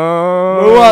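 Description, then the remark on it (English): A single drawn-out moo imitated by a human voice, steady, swelling louder and breathier toward the end of the brief call. “It's the cow.”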